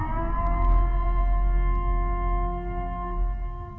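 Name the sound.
siren wailing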